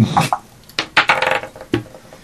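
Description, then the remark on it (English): Several dice clatter and tumble across a table in quick, irregular clicks, loud, with a brief pause before a final rattle and a few softer taps. “You're like shitty roller dice. You're gonna roll way down.”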